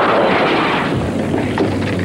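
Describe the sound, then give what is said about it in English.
Jay Leno smashes the window of a car bearing a 'baby on board' sign with a sledgehammer on a hot day: a loud, harsh crash followed by a dense, noisy clatter of breaking glass that continues throughout, with another sharp hit near the end. No one speaks. “If you have a baby on board sign on your car, Jay Leno will come at your car with a sledgehammer just to make sure the baby's okay.”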